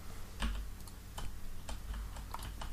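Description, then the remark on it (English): Computer keyboard keys being pressed in an irregular series of sharp clicks, several quick taps over a low background hum, with no talking, while trying to swing a sword in a video game. “I'm trying, I can't remember which button's up. The bloody... Keys are really sensitive.”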